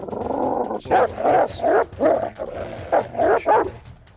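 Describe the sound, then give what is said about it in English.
Wolves bark and yip in a quick, uneven run of about eight sharp calls, loud, after a brief steady whining tone at the start. No one speaks. “There's 57 wolves, you guys.”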